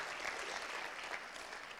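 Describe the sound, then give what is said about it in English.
A church crowd applauds steadily to honor a friend of the church, a dense, even wash of many hands clapping at once with no voices standing out above it. “You're like, is that enough clapping?”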